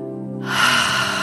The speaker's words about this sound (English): Let's breathe in through our nose nice and deep and releasing out through the mouth. And we're going to do that again. And on the exhale, really going to make a noise when that breath comes out. Breathing in through the nose.